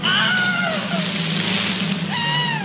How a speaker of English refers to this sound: The Wilhelm scream is a sound effect that was recorded in 1951 for a film called Distant Drums. It was a Gary Cooper movie. And they needed the sound for a man being bitten by an alligator and being dragged underwater.